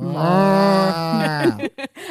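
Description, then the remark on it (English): A person imitates a cow with one long, low mooing call, held steady for over a second before dipping in pitch, followed by a few short breathy bursts like laughter. “I can't do insane. It. I can do a good cow though.”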